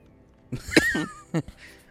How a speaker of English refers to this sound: Yeah, that's me from the sudden jolt. I'm coughing.